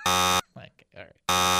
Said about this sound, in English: Okay, boy, that got a lot of buzzes.